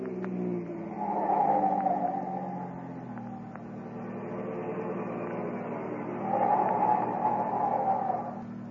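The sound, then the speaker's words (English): A car engine roars as it speeds along with a police car close behind, a high whine rising over the motor, then the engine note drops as the car slows to a stop at a stoplight before surging again. No one speaks. “But close behind him speeds another car, a police car.”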